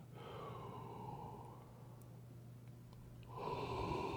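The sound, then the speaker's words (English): Slow, deep breaths during a guided calming breathing exercise: a long airy inhale, a quiet pause, then another breath starting, all over a faint steady low hum with no talking. “You're breathing in.”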